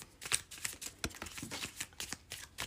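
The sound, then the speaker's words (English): A large deck of tarot cards being shuffled in two sections, with a quick run of soft papery flicks and riffling snaps in an irregular rhythm, fairly quiet with no voices. “I have to shuffle it in two sections because there's so many of these cards.”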